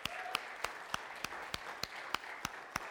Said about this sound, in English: We have a lot of people that serve at this church. Let's give our servers a round of applause.